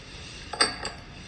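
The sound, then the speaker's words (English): A capped plastic bottle hits a hard surface with a sharp hollow knock, then bounces once for a second, lighter clack, with no talking. “If I was to drop this with the top on, it'll just fall.”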